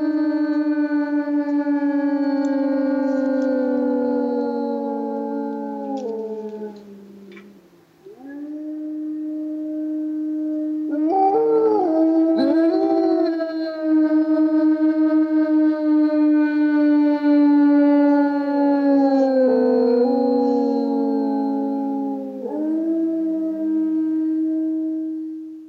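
Long, sustained coyote howls with sliding pitch, rising and falling over about twenty-five seconds, loud, with a brief dip partway through and no talking, presented in a guided meditation as Coyote Medicine Woman opening the South Gate.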